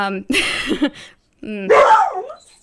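A dog that has gone to the door, where someone is, barks in two loud, drawn-out bursts separated by a short pause, somewhat strained, almost whining at the edges.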